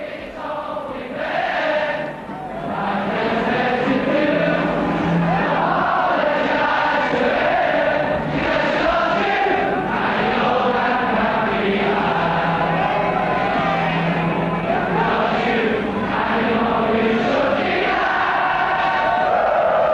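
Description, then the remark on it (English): A huge football crowd on the Kop at Anfield, Liverpool, sings together in a loud, sustained swell of massed voices, rising and falling in rhythm with a roaring, echoing wash that stays dense for the whole stretch. “The music the crowd sings is the music that Liverpool has sent echoing around the world.”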